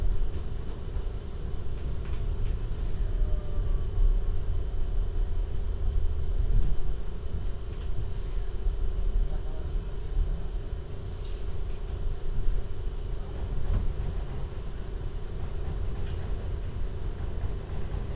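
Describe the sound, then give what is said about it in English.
A Manhattan-bound 7 subway train, with 74th Street as the next stop, rolls along with a steady, heavy low rumble and constant rattling, a dense continuous roar heard from inside the car with occasional faint clanks and squeals. “This is the Manhattan bound 7 train.”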